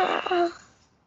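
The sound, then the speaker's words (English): A person imitates a man's scream with a brief, strained vocal cry that holds a steady pitch for about half a second, then fades away quickly. It is the scream of the game character Jan as he is flung from a train and dies. “Do I see Jan getting thrown from the train? No, but you hear him scream as you continue to go.”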